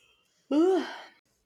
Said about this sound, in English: So I don't know what's got me so tired. I don't know either. As I yawn.